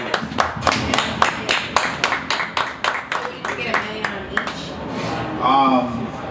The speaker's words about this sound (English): Put it out on Valentine's Day in 2017, and it just hit 2 million streams between YouTube and SoundCloud. Yeah. Let's clap it up for that.